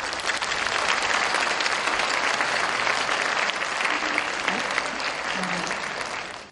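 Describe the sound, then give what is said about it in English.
Sustained applause from an audience welcoming distinguished guests, including the Governor of Jeju Special Self-Governing Province, a dense steady patter of many hands clapping at an even loudness for several seconds before stopping abruptly. “Please welcome each of them with a warm round of applause.”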